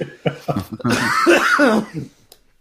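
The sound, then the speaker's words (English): A person coughs several times in quick, rough bursts, followed by a longer strained, throaty cough-like exhalation before it trails off. “Sorry for coughing.”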